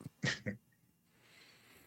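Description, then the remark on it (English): A dog gives two quick, sharp snorts or huffs in a row, followed by quiet hiss with no talking. “My dog came to say hi.”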